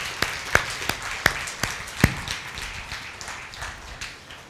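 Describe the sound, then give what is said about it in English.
Scattered hand claps from a small group welcoming people who have just received Jesus, sharp and uneven at first, then thinning into a soft, irregular patter before fading out. No one speaks. “Yeah, we can clap.”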